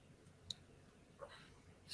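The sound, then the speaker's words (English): A few sharp, isolated clicks from a new, faulty keyboard plugged into the wall, spaced irregularly over a quiet background, with the last one slightly louder and brighter. No one speaks. “I'm just really upset with how broken this. This is a new keyboard.”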